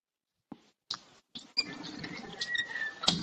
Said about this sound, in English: It just started raining.